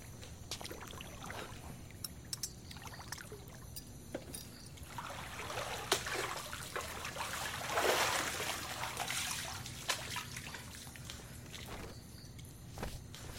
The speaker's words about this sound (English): Mind if I pour myself a drink?